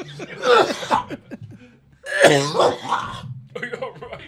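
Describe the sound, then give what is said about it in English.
Loud bursts of harsh coughing after smoking, in two clustered fits, each a rapid series of hacking coughs with strained, raspy breaths in between, ending with a quieter throat-clearing cough. “I can't tell through my coughing.”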